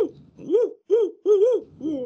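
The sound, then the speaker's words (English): A barred owl, heard on a barred owl camera, hoots in a steady series of about five loud, rising-and-falling notes, some running together, with no other sounds around them. “I think John's getting in the spirit with the barred owl cam here.”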